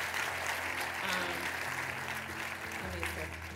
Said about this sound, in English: Come on, clap it up for the word of God. That was good.